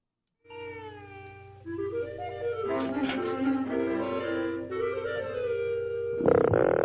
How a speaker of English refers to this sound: In front of anyone else, Michigan is just an ordinary croaking frog.